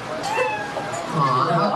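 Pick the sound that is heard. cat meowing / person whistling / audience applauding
cat meowing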